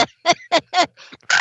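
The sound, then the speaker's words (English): A crow caws in a quick series of five or six harsh, raspy calls, loud, ending on a longer, noisier caw. No one speaks. “Oh, crow!”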